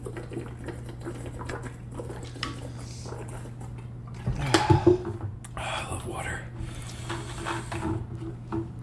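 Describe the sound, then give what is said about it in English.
Someone takes a quick drink of water: a short burst of handling and swallowing noise over a steady low hum, with faint murmuring in the background. “Let's hydrate real quick.”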